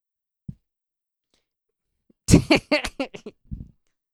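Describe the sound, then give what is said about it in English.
A microphone being fitted into a difficult-to-use mic stand: a soft thump, a pause, then a burst of rattling clunks and scrapes ending in a low bump, with no talking. “He is trying to get the mic into the mic stand, but it is a difficult mic stand to use.”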